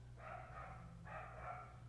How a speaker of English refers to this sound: Where's that coming from? Dog barking.